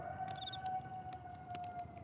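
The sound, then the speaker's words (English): Coyotes howling faintly, a long, steady mid-pitched wail that holds and wavers, with a brief higher-pitched cry overlapping it early on. No one speaks. “Oh, you hear that? The coyotes must know we's talking about Harrison.”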